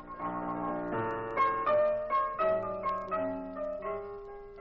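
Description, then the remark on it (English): Piano music played by a pianist at the Pink Elephant nightclub, heard through an open door: a melodic line of struck notes ringing and decaying over sustained chords, at a moderate, even volume with a few slightly louder accented notes. “But the door was open so we could hear … at the piano.”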